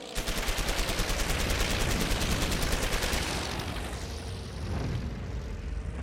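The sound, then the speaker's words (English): A long, rapid burst of heavy machine-gun fire from an aircraft, firing tracer and incendiary rounds at a parked plane on an airfield tarmac, rattles loudly for several seconds, then gives way to the roar of the aircraft engine sweeping past as it strafes. “And then they look up, this plane just unloads on it.”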